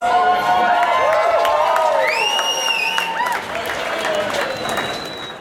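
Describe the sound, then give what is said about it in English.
A burst of applause sound effect: steady, loud clapping from a crowd with cheering voices and a few high, sliding whistles, holding for several seconds before easing slightly. “Stan, we're going to put some applause here.”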